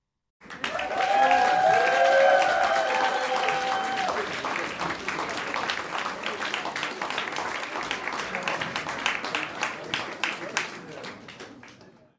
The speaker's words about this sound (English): I love that clapping laugh track so much. I'm going to try to figure out many ways to use that.